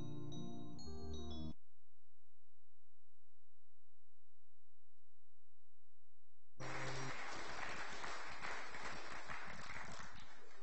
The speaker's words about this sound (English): I think that round of applause was for the toddlers for taking part.